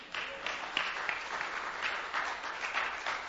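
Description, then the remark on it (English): A crowd applauds itself for a fundraising campaign almost 70% of the way to its target, many hands clapping in a dense, even wash of sound that holds at a moderate level throughout without any voices. “Give yourself a clap.”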